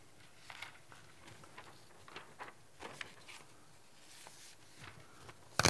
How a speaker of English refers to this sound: Hope y'all don't mind me shuffling my papers here. I usually forget about looking at my notes and skip about half of them.